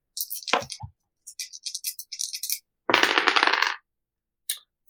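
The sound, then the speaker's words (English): Plain pip dice clatter and rattle: a bright initial clack, then a scatter of quick, light clicks tumbling across a hard surface, followed by a louder burst of shaking rattles and one final tap. “Again, these dice are hella good.”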